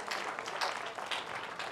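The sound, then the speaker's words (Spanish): An audience applauds together in praise of the Lord, a steady dense wash of many hands clapping at once, bright and continuous for under two seconds with no voices over it. “¿Cuánto dan un aplauso de alabanza al Señor?”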